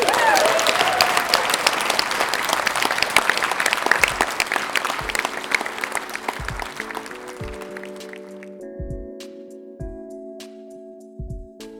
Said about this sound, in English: So a final round of applause.